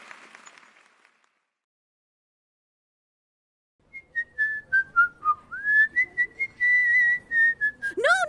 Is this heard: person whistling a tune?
yes